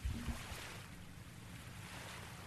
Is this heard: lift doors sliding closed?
no